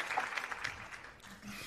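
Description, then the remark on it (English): A short burst of applause given for an apology: dense, irregular clapping that runs steadily for under two seconds at a modest level, with no clear voices over it. “And I'll give you an applause for that apology, even though you blamed it on me.”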